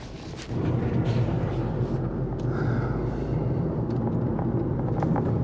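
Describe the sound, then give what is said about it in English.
A GTI car drives over a standard-height speed hump, heard from inside as a loud, steady low rumble of engine and road noise that swells in after a brief quieter start, with no one speaking. “Going over this speed hump now. Let's see how we go.”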